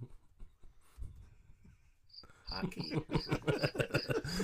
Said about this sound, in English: Is it crickets?